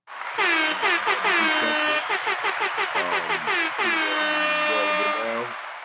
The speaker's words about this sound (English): Great news, everybody. Get the air horns ready. Let's go.